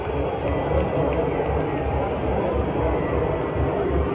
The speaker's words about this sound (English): But I hear some boos in there too. They just introduced. There's the boos.